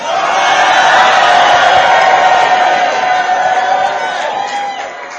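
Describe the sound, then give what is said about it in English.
An audience shouts together in a loud, dense roar of many voices, sustained for several seconds with no pauses before easing off slightly at the end. “If you are shouting, shout.”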